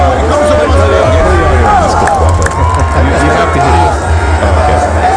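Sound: stadium crowd chanting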